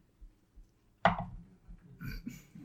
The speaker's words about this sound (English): You just hear dice hitting the table. I'm like, we know what's happening.